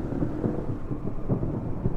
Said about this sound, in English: And there's also a thunderous peal that can be heard within 300 feet